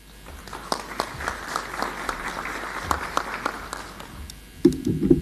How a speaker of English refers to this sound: This is the first time she's presenting at the convention, so I'm going to ask you to give a warm round of applause for her when she comes up.